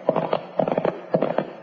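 Hooves of two horses from Cherokee Stable, ridden toward Doby City west of Abilene, clip-clopping in a steady, galloping rhythm: three quick clusters of sharp knocks, moderately loud, with no voices.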